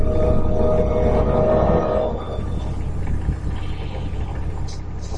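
A car engine rumbles steadily, a loud low drone that eases slightly after a couple of seconds and keeps going with no voices over it.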